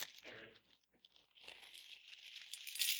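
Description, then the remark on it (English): Several gold coins, bought on Amazon, shift and clink inside a crinkly bag, with a steady rustling and crunching that grows louder toward the end. No one speaks. “Now, I brought some gold with me for a little object lesson. I have several gold coins.”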